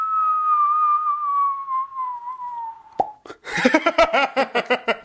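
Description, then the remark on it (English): A voice imitates a firework for Fireworks Day (Guy Fawkes): a long, steadily falling whistle, a sharp bang, then a rapid, rhythmic string of crackling pops, all made by mouth. “Should we make some firework noises?”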